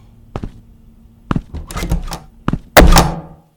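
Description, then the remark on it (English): A series of thumps and shuffling movement as someone slowly walks out of a room, ending with a loud door shutting behind him with a solid thunk and a brief rattle. No voices. “And he slowly walks out of the room, muttering to himself, and the door closes behind him.”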